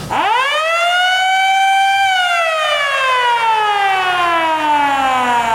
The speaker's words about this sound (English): That I am. That is an air raid siren. And because you have a 100% success rate, you've probably never heard that.